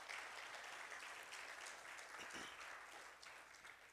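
A church audience claps their hands during a morning service to thank God for their pastor. The sustained, dense applause has many overlapping claps forming a steady crackling wash that stays fairly loud throughout, with no one speaking over it.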